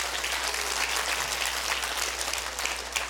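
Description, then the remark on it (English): An audience in a church claps their hands in steady, sustained applause, a dense wash of many overlapping claps holding at an even loudness throughout, with no voices standing out. “Clap your hands and rejoice in that because God is for us.”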